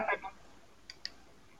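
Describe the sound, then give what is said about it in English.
Two quick, faint clicks sound close together after a short burst of noise, like keys or a button being pressed, then quiet. “Yeah, who is typing? Who's clicking a button?”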